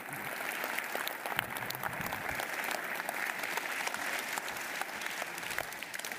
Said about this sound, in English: Can we give Bob another round of applause today?